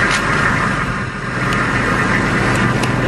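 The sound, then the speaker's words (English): A Humvee engine idles steadily, a continuous low rumble with a rough, droning texture and a few faint clicks on top, no voices. “It's a Humvee idling.”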